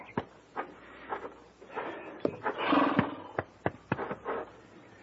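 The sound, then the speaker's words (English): An agitated bay horse snorts and lets out a rough, strained cry midway, surrounded by sharp irregular thuds of hooves stamping and kicking as it stomps a man. “Looks like that bay had enough of Ira, too.”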